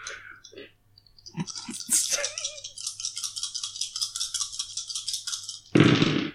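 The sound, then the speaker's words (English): A handful of dice rattles in a cupped hand, a quick, steady clatter lasting a few seconds, then ends in one louder burst as the dice are tossed down. “You've got to roll at least one 6 out of all these dice, right?”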